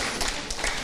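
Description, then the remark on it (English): A short burst of church audience applause after a video, many hands clapping together in a dense, steady patter at moderate volume with no voices over it. “You can clap if you want.”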